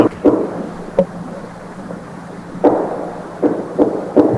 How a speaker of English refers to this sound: Wood knocks? That's the fucking wood knocks? Sounds like guns. That really does.